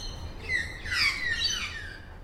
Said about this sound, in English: Whereas this? That's a pied butcher bird.